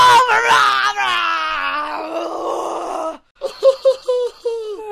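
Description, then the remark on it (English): A person imitates an angry roar, letting out a long, strained roar for about three seconds, gritty and harmonic, then breaks off briefly before a series of shorter, choppy growling bursts. “But what type of roar are you at? Is it like a angry roar or you're looking?”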